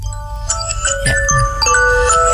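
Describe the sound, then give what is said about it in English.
A Samsung smartphone alarm tone plays a tinkly, chiming nursery-rhyme melody, bright sustained notes stepping up and down over a steady low hum. “Is that your alarm tone? Yeah. The nursery rhyme?”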